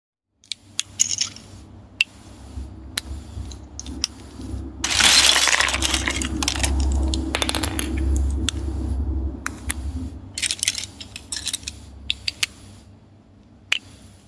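Plastic LEGO bricks clink and rattle in dense, irregular bursts, crackling like a campfire over a low steady rumble, swelling louder midway then thinning to scattered sharp clicks, in a white noise track made from the sounds of LEGO bricks. No voices.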